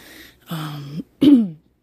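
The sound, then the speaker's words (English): Someone clears their throat twice in quick succession because their voice feels raspy and deep: a steady, voiced rumble followed by a shorter, louder grunt that drops in pitch, then silence. “I'm clearing my throat a lot because I feel like my voice is getting raspy and deep, and I don't want to sound like a dude here, but I'm just trying to do the best I can.”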